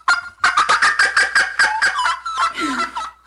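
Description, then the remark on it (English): A burst of turkeys gobbling, a rapid rattling series of loud, warbling pulses that run together for a few seconds, vigorous, with several birds seeming to call at once. “The turkeys are excited. Turkeys are excited for this one.”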